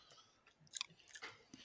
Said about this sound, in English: This chocolate is okay once I chew it enough and it gets to a different temperature so I can actually taste it. You know, a lot of times the chocolate, you just chew it and eat it while it's frozen and you can't really taste it.